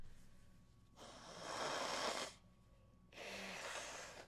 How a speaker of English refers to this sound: I said I was going to stop blowing my nose on this microphone. How disgusting.